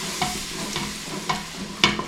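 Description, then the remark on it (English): A utensil scrapes and clinks through a sizzling mixture in a pan in a kitchen, stirring as something is poured in, with four sharp strokes roughly every half second over a steady hiss of frying. No one speaks. “Okay, so it says stir as you pour. So I'm gonna pour, you stir.”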